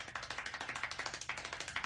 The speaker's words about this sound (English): What was that? Clapping hands.